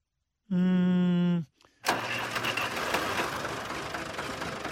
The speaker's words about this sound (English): Slow to fire up the Tractor.